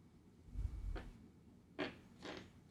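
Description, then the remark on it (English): A d20 die is rolled about six times for a perception check, each throw giving a short, faint clatter across a tabletop, preceded by a dull low thump. No one speaks. “I rolled my d20 like 6 times.”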